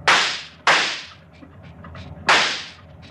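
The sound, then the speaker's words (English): Three loud gunshots crack out, two in quick succession and then a third after a short pause, each with a sharp attack and a brief ringing decay. “He's emptied his gun.”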